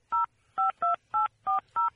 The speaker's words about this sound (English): Let's see if we can do this. I hope I dialed the right number. I don't dial the phone anymore.